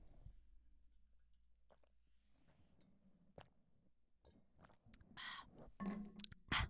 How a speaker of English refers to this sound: I hope you were able to hear me gulp.